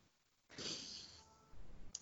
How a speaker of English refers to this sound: What are you clicking on over there, man? What are you doing? You're having a click fest. I know. That was the problem. I was distracted by the clicking.